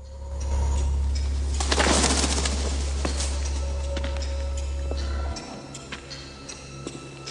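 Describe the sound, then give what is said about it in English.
In a Rambo film scene in caves, a bird startled by a Russian soldier bursts into flight with a short, loud flurry of flapping wings over a steady low rumble that cuts out near the end, leaving scattered faint ticks. “The soldier startles a bird, then turns.”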